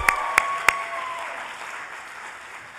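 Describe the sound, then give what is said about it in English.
A church audience applauds an auction sermon given as a duel between two ministers, with a few sharp, distinct claps at the start blending into a steady, moderate wash of clapping that gradually softens. No one speaks. “You can applaud.”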